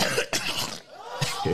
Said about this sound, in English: He came with the cough. Why the cough?